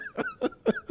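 A quick run of four short, dry coughs in a steady rhythm, fairly quiet, with no talking around them.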